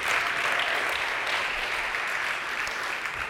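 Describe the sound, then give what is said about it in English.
Steady, dense applause from an audience after news that roughly $2.1 million was raised in a week, a continuous wash of many hands clapping at an even loudness for a few seconds with no voices standing out. “Okay, you guys, like no golf claps here. That's a big deal, right?”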